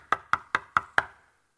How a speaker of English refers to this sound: You're hearing the knock.